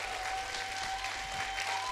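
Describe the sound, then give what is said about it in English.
A crowd claps steadily for a couple of seconds, a dense wash of many hands at moderate volume with a faint steady tone and low hum beneath. “Clap your hands like through faith.”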